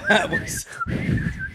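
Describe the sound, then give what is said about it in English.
A thin, steady whistle imitating wind blowing through the holes in Jesus's hands drifts along for about a second and a half, fairly loud, while voices talk beneath it. “Oh, whistle hand Jesus”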